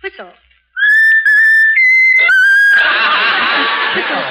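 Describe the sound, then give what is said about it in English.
A parrot named Raffles whistles a short tune of several loud, sustained, pure notes, then breaks into a harsh, raspy screech that carries on to the end. “How about whistling the tune that you like best of all?”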